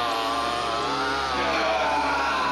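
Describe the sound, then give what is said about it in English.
A chainsaw roars loud as a chainsaw-wielding maniac barges into a hotel room, its buzzing engine holding steady and then revving slightly higher partway through, with no voices over it. “The guy who busts into the fucking hotel room with a chainsaw.”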